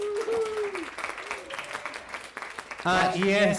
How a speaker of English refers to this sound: We would have accepted cream cheese, but give them a round of applause, Philadelphia!